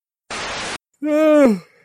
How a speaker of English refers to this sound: Oh, I was holding that yawn in for like 30 seconds, just waiting to do my thing. No, I'm not yawning because of the politics. I'm yawning because I'm getting sleepy, but now I'm good.